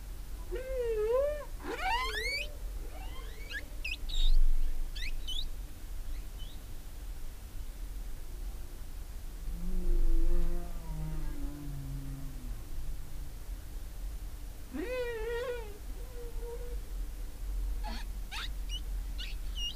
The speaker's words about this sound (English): And before we go into the conversation, Tom very kindly shared a recording of humpback whales singing. So I'm very happy to be able to share some of that with you.